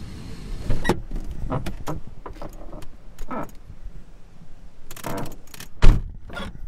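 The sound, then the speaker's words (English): Someone climbs back into a car: keys jangle, a door thunks shut and there are shuffling, rustling movements inside the cabin, with no talking. “Back in the car”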